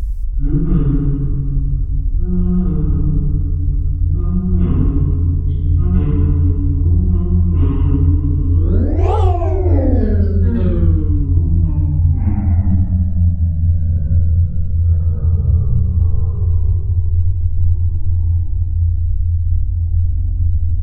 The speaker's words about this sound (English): You hear the sounds of stumbling footsteps and a strange, familiar humming.